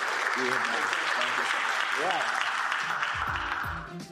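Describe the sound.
Steady crowd applause, a dense wash of clapping that holds at an even level for several seconds, with faint voices and a few whoops mixed in before it starts to fade.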